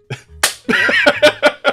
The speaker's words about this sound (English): Everybody high fives you. It's just like between, there's just so many guys just slapping each other right now.